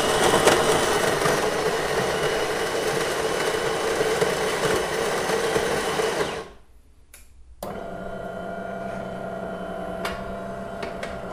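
A bean-to-cup espresso machine makes an espresso into a small espresso cup, running with a loud, steady mechanical whirr for about six seconds, falling briefly quiet, then settling into a lower, even buzzing hum as it brews.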